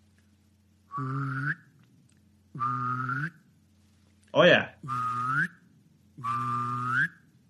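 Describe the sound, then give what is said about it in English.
A person mimics a duck's whistling call with their mouth: four evenly spaced, drawn-out reedy whistles, close and fairly loud, with a short spoken exclamation slipped in before the third. “Yeah, so there's all kinds of different whistles and noises and whatever all these ducks make.”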